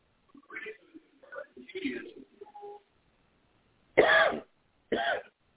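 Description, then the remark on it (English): A person makes a few soft, murmuring vocal sounds, then after a short pause lets out two loud, harsh coughs in quick succession. “I'll probably get this cough over with.”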